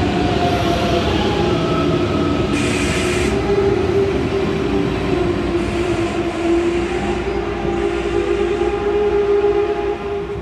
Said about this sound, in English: And I'm also a train nut, so we had to stop at the train station and look at some trains going by. This is a high-speed intercity train called the ICE, or they call it the ICE.